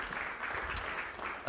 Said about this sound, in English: Let's give them a round of applause as they head out.